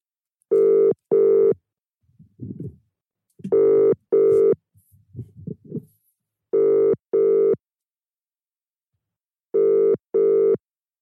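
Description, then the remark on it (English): A phone's outgoing ringing tone as a call is placed to a friend late at night repeats four times, each a pair of steady electronic buzzes in the British double-ring pattern, with faint rustling and murmurs in the pauses between rings. “So, that GCSE day, let me see if I can phone”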